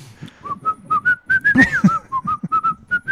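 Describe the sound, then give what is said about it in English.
Someone whistles a bouncy nursery-rhyme melody, a quick run of about a dozen short, clear notes in a steady sing-song rhythm, with no talking over it. “And he's just, like, whistling his way back to the spaceship.”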